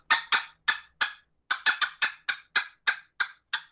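A turkey hen's cutting made on a turkey call: about a dozen sharp, loud clucks fired off in quick, uneven bursts, clear with no talking over them.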